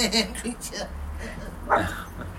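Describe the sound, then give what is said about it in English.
A female dog gives a few short, sharp barks, with a louder yelp near the end, as a grandfather plays football with her, while people talk in the background. “Stop playing football with the dog.”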